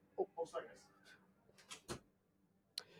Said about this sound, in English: But I don't know what the fuck just happened there. Someone just opened our door.